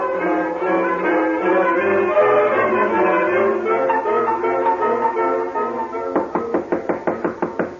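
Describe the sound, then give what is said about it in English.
Music plays for several seconds, then gives way to a loud, rapid series of about ten heavy knocks, police pounding hard and steadily on a door. “Open up in there. This is the police.”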